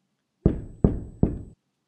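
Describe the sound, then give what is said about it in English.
Three heavy, evenly spaced knocks from a door knocker, each a sharp thud with a short resonant decay, loud, with no voices around them. “You need to get a door knocker.”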